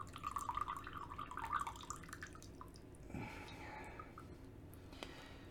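Water trickles and drips out of a coffee brewer used for a second brew of Azatsuyu tea, a steady light patter that shifts into a fuller gurgling pour partway through before thinning back to drips.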